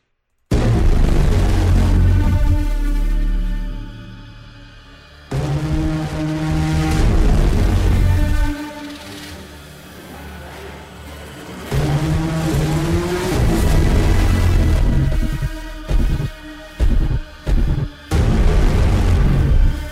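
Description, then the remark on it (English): A loud, spooky film score from an attack scene in a movie: dense, dissonant droning tones swell in blasting waves, dropping briefly between surges, then a burst of heavy stuttering hits near the end. No one speaks. “And so I want to play this little clip from when an attack happens on how loud and dumb, but perfect the score is.”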